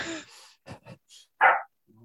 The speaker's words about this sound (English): dog, obviously. Dog's happy.